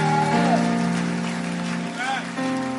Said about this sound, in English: Are you clapping? Give God some praise here.